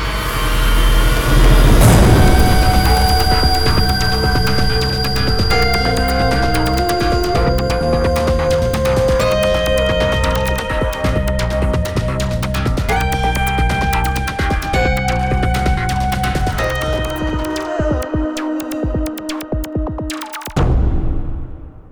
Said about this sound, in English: It is a science project. And a cell phone. It's both. We're making a new ringtone that sounds like a spaceship. That's all. See? It doesn't totally work yet.